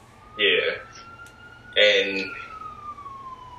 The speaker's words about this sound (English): You hear them sirens, man?